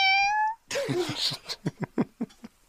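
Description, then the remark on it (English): A child's voice imitates a cat: a high, steady mew, then a breathy, yowling cry, followed by several short rhythmic vocal bursts, close and fairly loud. “I can make a cat sound.”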